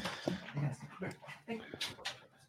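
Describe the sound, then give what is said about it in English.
A dog whimpers and whines in short, high, uneven bursts, with a few snuffly breaths between the cries. “And then go take care of your dogs.”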